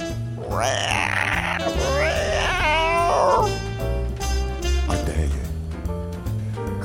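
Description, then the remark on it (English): Three drawn-out cat meows in quick succession, loud, rising and falling in pitch over an upbeat musical backing that carries on after the meowing stops. “Why not play our cats? See if you can take on our cats.”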